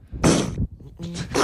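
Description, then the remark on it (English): A seal sneezes twice, loud: a sharp, wet, hissing burst, then a short pause and a second snorting sneeze with a brief throaty tone. “No, it's a seal sneezing.”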